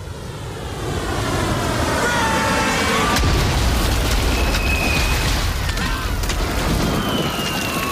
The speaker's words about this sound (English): We see lightning. And that clap of thunder. Oh my God. Here comes the rain. I love the shot of the rain coming in through the creek.